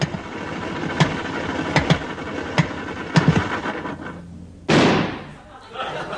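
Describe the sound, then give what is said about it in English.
An old car engine sputters and chugs halfway home on a drive, letting out several sharp backfire pops before faltering, then one loud final bang as the motor dies down into near silence. “Halfway home, your proud possession goes...”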